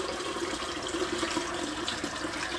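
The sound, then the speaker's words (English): Tap water runs steadily into a sink, a continuous splashing hiss that holds an even level from start to finish, with no voices. “Sorry, you're right next to the water.”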